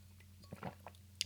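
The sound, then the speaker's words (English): Someone takes a drink of water: a few soft, wet gulps and swallows over a steady low hum, followed by a brief sharp click. “Drink water.”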